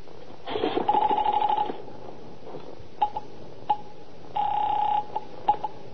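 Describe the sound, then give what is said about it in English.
Telephone handling as someone picks up the phone to call the police: a couple of sharp handset clicks and rattles alongside two buzzing, ringing tone bursts, fairly loud, with no talking. “I reached for the phone.”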